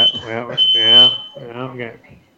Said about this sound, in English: this wouldn't be the Adam Dunn show without sending off the fire alarm